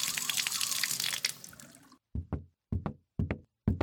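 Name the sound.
water running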